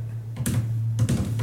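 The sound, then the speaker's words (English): Quick, crisp taps in a couple of short clusters, an imitation of a foot tapping on a floor, over a steady low hum. “They're like, wait, why does it sound like Morse code on the floor? Like I hear the guy going.”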